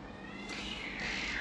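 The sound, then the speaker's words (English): Cats yowl and screech in a drawn-out, wavering cry that swells louder partway through, sounding like an outdoor catfight, with no voices. “I think there's cats fighting outside.”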